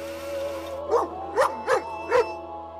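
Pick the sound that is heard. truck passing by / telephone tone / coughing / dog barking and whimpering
dog barking and whimpering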